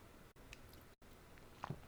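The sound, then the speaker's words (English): Quiet mouth sounds of a speaker taking a sip of water, with a soft slurp and a wet gulp near the end, against a hushed background with no talking. “These are things that to fuel your brain, not just with the water, which I'm taking a sip right now, and I hope all of you will take this opportunity to take a sip with me.”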